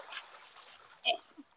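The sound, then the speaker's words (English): A single short, sharp splash as something drops into water, followed by a faint softer plop and quiet background murmur. “Let's put it in the water.”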